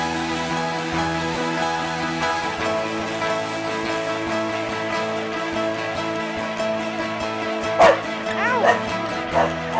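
Music plays steadily, then near the end a dog lets out three or four sharp barks and yips in quick succession, loud above the music.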